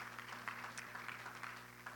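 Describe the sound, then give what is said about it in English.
Many people at a church service clap together for the guests in steady, dense applause, with a low sustained tone humming underneath throughout. “As you begin to make your way back to your seats today, could we give all of our guests a great big hand clap of praise today?”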